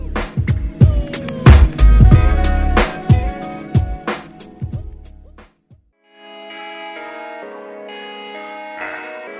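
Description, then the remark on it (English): A song played by a DJ plays loudly, heavy booming bass hits and bright bell-like tones pounding for about five seconds, then a brief drop to silence before a sustained, chiming melodic passage takes over. “So I'm about to play this joint.”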